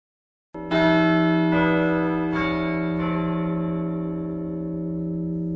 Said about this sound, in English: The loud church bells echo across Denier as black people come from throughout town in their Sunday best. It's a small country church.